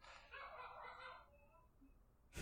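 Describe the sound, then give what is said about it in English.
Dogs bark in the background, a rough burst of about a second that fades into a quieter stretch with faint thin tones, then a sharp click at the very end. “Goddamn dogs. Dogs didn't like that.”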